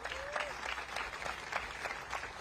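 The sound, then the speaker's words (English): Steady applause from an audience on the near west side of Milwaukee for Alderman Bob Bauman, a dense patter of many hands clapping at moderate volume, with faint crowd murmur underneath and no clear speech. “Please give a round of applause for Alderman Bob Bauman.”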